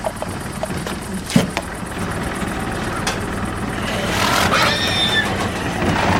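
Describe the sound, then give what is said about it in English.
A horse whinnies briefly in a film soundtrack, a sound tied to the kidnapped Tour de France cyclist characters when they are on screen; its high, wavering call rises out of a steady, engine-like rumble and a busy background of thumps and noise. “For example, the cyclists, Champion and the two others that get kidnapped in this movie, whenever you see them on screen, you hear horse noises.”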